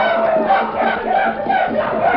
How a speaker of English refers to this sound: They were no longer afraid. They were blind and unreasoning. They brought forth the horses and with wild cries leaped to the saddle.